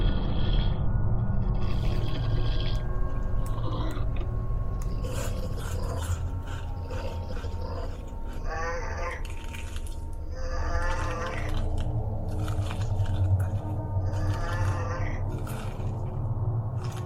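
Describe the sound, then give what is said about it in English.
Continuous monster munching and chewing sound effect, taken from Monster Eating Sounds for Halloween on YouTube, with wet rasping crunches and gnawing bursts repeating irregularly over a low rumbling drone, steady and fairly loud throughout, no voices. “I did some of the sound effects myself for this story, but the music credit goes to ESN Productions on YouTube, and a lot of the monster eating sounds and stuff like that goes to Monster Eating Sounds for Halloween on YouTube.”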